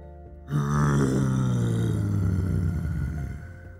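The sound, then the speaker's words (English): The yawn of a dinosaur named Dino rumbles out as one long, loud, deep roar lasting about three seconds, its pitch sliding slowly downward before it trails off, with no voices around it. “Even though Dino sounds scary, he was just yawning.”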